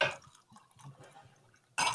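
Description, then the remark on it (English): Whisky is poured into a glass in a short measured trickle, framed by brighter splashy bursts at the start and end, with faint liquid patter between. “I'm a little obsessive about making sure I get the measurement correct for my glass.”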